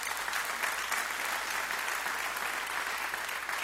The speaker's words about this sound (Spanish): Dile un aplauso fuerte a Jesús.